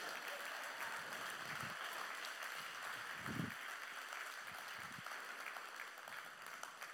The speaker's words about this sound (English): Now you need to clap so I can breathe.